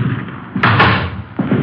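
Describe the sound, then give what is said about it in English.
The front door of an apartment building bangs shut with a sharp, loud thud that rattles briefly, followed by a second softer knock a moment later. “Front door open? Thanks. Yeah, let's go.”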